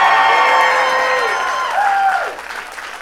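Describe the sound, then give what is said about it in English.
A crowd applauds loudly and steadily, with sliding whistle-like tones and cheers rising over the clapping. The applause stays strong for about three seconds before easing slightly. “It says here, extra pause for applause.”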